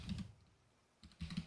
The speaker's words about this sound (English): You can hear me typing now.